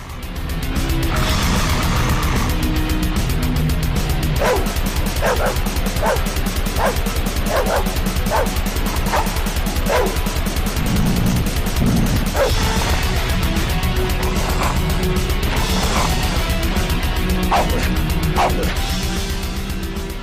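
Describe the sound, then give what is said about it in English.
Two trained pet dogs bark, snarl and growl in repeated harsh bursts, roughly one per second, as the lead vocals over loud, relentless, fast-paced heavy metal with pounding drums and distorted guitars. “trained them to unleash the beast with snarls, growls, and barks that make those Norwegian guys heel and whimper.”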